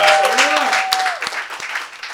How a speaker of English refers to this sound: Big round of applause